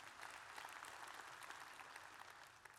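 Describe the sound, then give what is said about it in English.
A scattered, half-hearted round of applause from a church audience, steady clapping at low volume that never builds, holding evenly for a few seconds with no voices over it. “That was half applause.”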